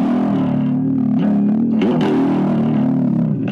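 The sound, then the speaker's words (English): An electric guitar, heavily distorted, imitates a cat's purr with a low, steady, rumbling drone that holds loud for about three and a half seconds, with a brief wobble in pitch midway. “And then the purring.”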